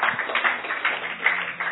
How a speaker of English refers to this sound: Give a clap offering to Jesus.